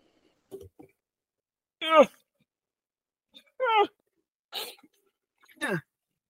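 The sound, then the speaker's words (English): An excited female dog shut in a bedroom lets out a string of high, harmonic whines and yelps, about five separate bursts spaced a second or so apart, clear with no one talking. “I have to let my dog out of my bedroom because she's going crazy.”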